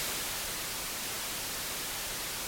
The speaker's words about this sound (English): Now you might be thinking, why would I want to generate noise? What can I use that for? Well, most of the time, this will be white or pink noise, which is great for replicating the sound of something like TV static.